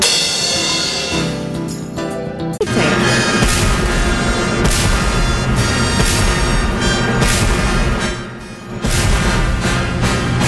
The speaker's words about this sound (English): California's biggest fireworks show, the Big Bay Boom, from four barges on San Diego Bay on July 4, and the official soundtrack right on 101.5 KGB starts at 9 o'clock Monday night, the 4th of July.